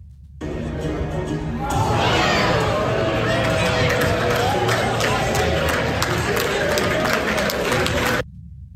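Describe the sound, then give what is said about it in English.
A large crowd murmurs and reacts, swelling into a loud, steady roar after a moment, with only a few scattered, muted claps mixed in before it cuts off. “There weren't many claps.”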